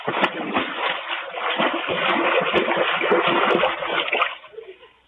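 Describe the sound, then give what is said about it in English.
A new Cadillac car drives into a swimming pool with a large, heavy splash, followed by several seconds of loud churning and sloshing that fades out near the end. No voices are heard. “Right into the water.”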